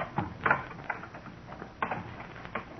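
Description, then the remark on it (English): A door lock being picked or worked open: a handful of quiet, irregular metallic clicks and small rattles spread over a few seconds, with faint scraping between them and no voices. “Go on, get the door open.”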